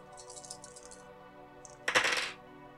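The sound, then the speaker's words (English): Three dice, one action die and two challenge dice, rattle softly as they're shaken for about a second in a tabletop role-playing game, then a sharp clatter as they tumble across a hard surface and settle on a 3, a 6 and a 2. No one speaks. “And then we're going to roll swear an iron vow.”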